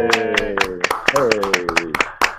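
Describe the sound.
Sharp hand claps in a quick, slightly uneven rhythm, about a dozen in two seconds, like a small round of applause, with a sustained voice sounding loudly underneath.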